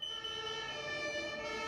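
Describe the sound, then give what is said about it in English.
A fire engine siren wails in a steady, high, tonal drone with strong harmonics, holding at a constant loud level for the whole short stretch with no speech. “The neighbour saw the smoke and called the fire brigade.”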